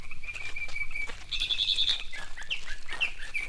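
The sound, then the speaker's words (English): A mockingbird calls repeatedly to its mate in bright, high chirping phrases, one rising into a rapid trill, carried over a steady background hiss with no one speaking. “That's the call of a mockingbird.”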